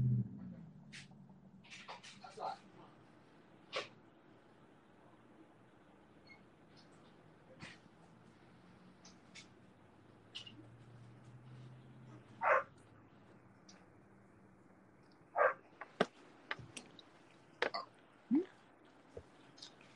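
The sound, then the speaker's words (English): A dog barks sporadically, a few scattered short barks at first and then a quicker cluster near the end, over a low, steady hum. “I gotta put the dog outside for a bit.”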